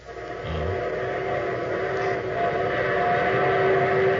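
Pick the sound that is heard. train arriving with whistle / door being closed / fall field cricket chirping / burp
train arriving with whistle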